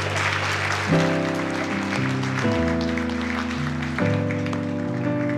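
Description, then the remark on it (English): A crowd claps and applauds steadily for several seconds, giving God a hand clap, a dense crackling wash of hands, while sustained organ chords ring underneath and shift to new notes every second or so. “just give God a hand clap right now.”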